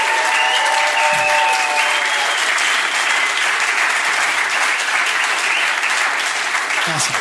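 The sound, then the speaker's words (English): Sustained audience applause honoring a woman as she is invited up, a dense, steady wash of clapping hands that stays loud and even throughout, with faint cheering tones and a few voices rising underneath. “And so as I invite her up, would you just honor her and bless her with a round of applause?”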